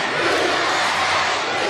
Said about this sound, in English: You hear the crowd here chanting, USA, USA, just like they'll be doing in the Boston Garden at the WWF Survivor Series.